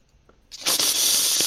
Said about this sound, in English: Who's slurping ramen there?